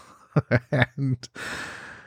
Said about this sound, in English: I don't know if you can tell from my voice, but I'm breathing a little heavier than normal. I got me one of those fancy Peloton bikes.